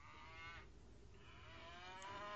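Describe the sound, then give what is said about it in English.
A single old cow bawls in long, drawn-out harmonic calls, one after another with a brief break, loud over steady low background noise, at a cow camp after the worked calves have mothered up. “Just one old cow left bawling.”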